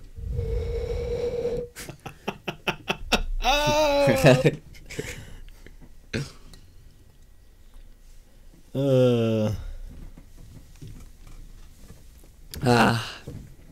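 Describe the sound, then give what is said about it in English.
A person imitates a fart that sounds like blowing across the top of a Coke bottle: a steady, breathy hoot held for under two seconds, followed by rapid clicks, wavering vocal squeals and bursts of laughter-like voicing. “Oh, every time she farts, it sounds like someone blowing across the top of a Coke bottle.”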